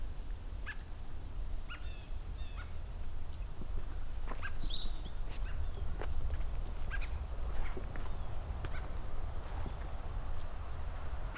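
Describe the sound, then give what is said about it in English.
American robins call back and forth with short, sharp chirps and a few high squeaky notes, scattered irregularly over a steady low outdoor rumble; no one speaks. “So while a little quiet here right now, I've got some American robins talking to each other.”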